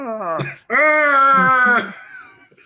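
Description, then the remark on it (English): A voice imitates an injured NFL player screaming after diving in from the 5 yard line: a short falling wail, a brief gap, then a long sustained high-pitched cry that trails off into a weaker moan. “He dives in, and then he starts screaming in his frog bro.”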